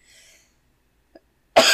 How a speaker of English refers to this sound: It's okay to cough, buddy. Yeah, the smell of like spell ozone and like charred corpses is pretty bad.